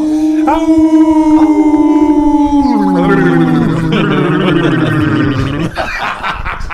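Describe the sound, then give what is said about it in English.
Loud coyote-like howling: sustained wavering tones slide downward in pitch and overlap for several seconds, then break into rough, gargly, cough-like bursts near the end. “Cold drinking. Dog coughing. Coyote.”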